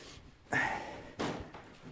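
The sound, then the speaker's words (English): A door inside a renovated old rectory slams shut with a sharp, heavy thud, followed about half a second later by a second softer knock as it settles, with no one talking. “Let's close the door, turn on the lights.”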